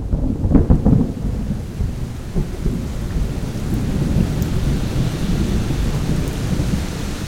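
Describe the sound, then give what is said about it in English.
A thunderstorm with a heavy thunder crack near the start, its deep rumble rolling off beneath steady, dense rainfall that continues loudly to the end. No voices are present. “you take all the big thunder hits and you put them over here at this gain stage, and then you take all the rest of the rain that's sitting underneath and you can just crank it all up as much as you want.”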